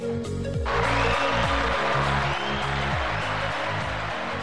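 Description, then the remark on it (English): A small crowd applauds to welcome two guests from the firm Perks, a steady wash of dense clapping that swells in after a brief moment and holds at an even, fairly loud level, with low stepping musical tones underneath. “That is just a small group of people I keep chained up under my desk. They're here just to applaud you guys.”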